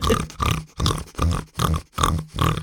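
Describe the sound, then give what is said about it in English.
A French bulldog snorting heavily, about six loud, raspy, pig-like snorts in a steady rhythm, each a short rough burst with brief gaps between, with no voices over it. “A few friends of mine have got French bulldogs, which is kind of part of the pug posse. Pug-esque. And my God, the noise.”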